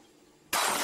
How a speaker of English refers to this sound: Oh, right. Shattered fucking staging glass.